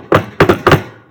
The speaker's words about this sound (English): You're going to jinx it. Everyone knock on the table.